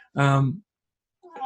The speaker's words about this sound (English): there's my cat